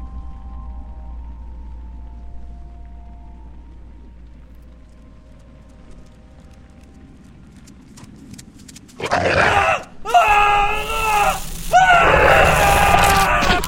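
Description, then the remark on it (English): A low, steady rumble fills the first several seconds, then loud, shrill human screams suddenly break out and continue in wavering bursts until the end. “We woke to screams.”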